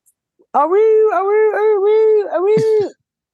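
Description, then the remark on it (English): A person's voice imitates a small dog kept in the house whining: one long, loud, wavering high-pitched whine lasting over two seconds with a few dips in pitch, ending with a short break. “He whining.”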